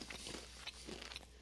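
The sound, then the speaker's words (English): Crisp crunching of someone biting and chewing crunchy Zambos brand lime-flavored chips, a handful of quick irregular crackly bites over a soft background, with no talking. “I like the crunch.”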